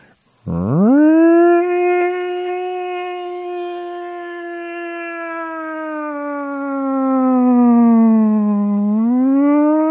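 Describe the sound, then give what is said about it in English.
A voice imitates a fire department siren that signaled a snow day, with a loud wail that swoops up sharply, holds a long steady tone, sags lower, then rises again near the end. “Or if you were up early like my grandmother was, the fire department would set off this loud ass siren.”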